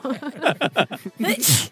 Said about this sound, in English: You scared me so much with all that talk, I had to sneeze it out.